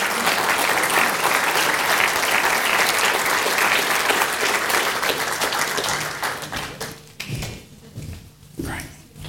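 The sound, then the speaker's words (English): A church audience breaks into loud, sustained applause as two people come up for baptisms, a dense wash of many hands clapping that holds steady for several seconds before thinning out into scattered claps as it fades. “Why don't you give them a big round of applause as they come now?”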